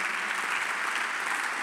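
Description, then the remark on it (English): A church audience clapping hands as a clap offering to God, in a sustained, dense burst of applause, steady and fairly loud throughout with no voices standing out. “Give God a better clap offering.”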